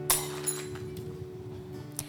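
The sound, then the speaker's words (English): A sharp crack of glass breaking right at the start, followed by a few faint scattered clinks of pieces settling, all over a steady low electrical hum. “And I want him to break the glass.”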